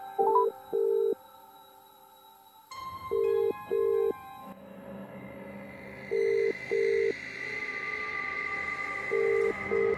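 A phone call being placed: a ringback tone sounds in steady double pulses, repeating four times at even intervals over a low, hissy background, with no one speaking.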